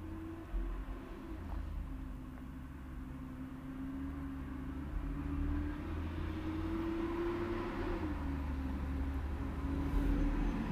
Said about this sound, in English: You can hear all the trucks and buses.